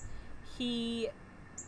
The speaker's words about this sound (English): Sorry if y'all hear that bird. There's a mama bird out here, and she won't go away from the nest, and she won't be quiet.